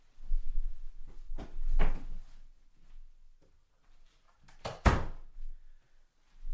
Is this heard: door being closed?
yes